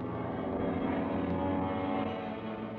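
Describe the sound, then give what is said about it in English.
A steady, droning roar of propeller airplanes passes overhead, loud and continuous with a dense low rumble and no break for the whole stretch. “Are our planes. They must be ours.”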